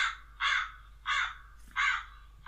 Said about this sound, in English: Sorry, boys. Who let that crow in?